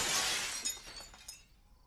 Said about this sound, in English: Yeah, that was crazy. He broke the glass on the front door. It was a little wild.